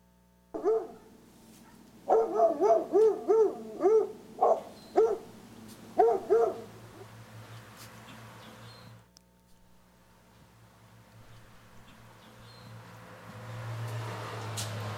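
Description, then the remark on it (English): A small house watchdog, about the size of a cat, barks in a quick, high-pitched flurry of about eight or nine yappy barks, fairly loud, then falls quiet, leaving only low background rumble. “He's not a real big dog. He's actually about the size of my cat.”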